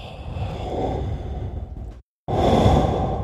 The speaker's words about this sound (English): You can just listen to the sounds of your heavy breathing.